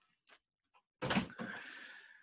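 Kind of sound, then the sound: household object, door closing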